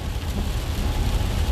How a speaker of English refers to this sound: Sorry if you hear a lot of noise. It's raining hard out here, y'all. I'm out here driving through San Dimas and Glendora right now.